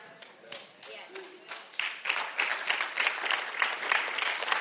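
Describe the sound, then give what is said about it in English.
Scattered, hesitant clapping from an audience starts with a few isolated claps, then gradually builds into light, uneven applause that stays fairly soft throughout. “Does it deserve a clap?”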